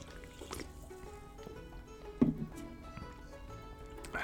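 A quiet sip of Dr Pepper soda, with a brief slurp and swallow partway through and soft liquid sounds, no one talking.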